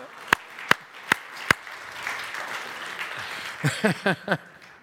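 Four sharp, evenly spaced hand claps ring out, followed by a low crowd murmur and a few short bursts of voices calling out.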